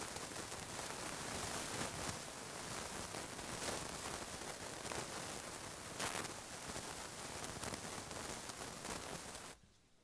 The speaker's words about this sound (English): Sounds enough like white noise that it might make me go to sleep.